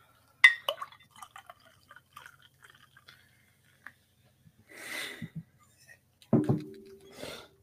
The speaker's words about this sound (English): Yeah, after I pour another beer.